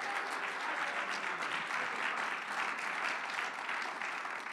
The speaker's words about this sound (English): Oh, clap your hands, somebody, under the Lord.